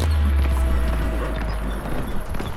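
Horses galloping hard through the night as their riders spur them onward, a steady rumble of hooves over a deep low roar, loud, with no voices.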